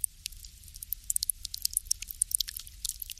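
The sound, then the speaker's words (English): Water trickles and drips over rocks in an opening in the snow about 18 inches down, a quiet, steady stream of small irregular splashes and plinks with a faint low rumble underneath and no voices. “And I just listened to the water running and dripping.”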